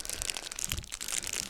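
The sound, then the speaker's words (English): Crinkly plastic wrapping being crumpled and torn open as a cigar is unwrapped from its package: a steady run of crisp, papery crackles with a few sharper crunches, moderately loud, no talking. “First, let me get it out of the package.”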